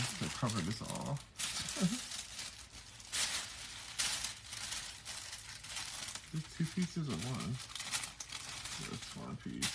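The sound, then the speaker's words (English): Wrapping paper crinkles and rustles steadily as a gift is wrapped on Christmas Eve, with brief bursts of crackling and a few short murmurs of voice in between. “Paper on there too, so it looks like a gift.”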